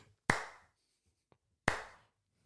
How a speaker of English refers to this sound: Said so well. A slow clap for you.